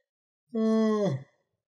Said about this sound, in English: Big yawn.